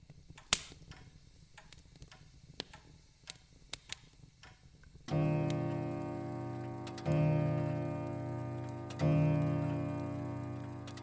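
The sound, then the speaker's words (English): Soft, uneven ticks of a clock in a still drawing room click quietly for a few seconds, then three rich, ringing chime strikes sound about two seconds apart, each swelling and lingering over the next. “The clock ticked, the coals stirred in the grate”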